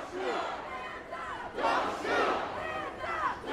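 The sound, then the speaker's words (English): A crowd of protesters chants together and reads out the names of others killed by police across the nation, in loud, surging waves of many overlapping voices, with the shouting swelling in repeated bursts about every second. “chanting and reading out the names of others killed by police across the nation in recent years”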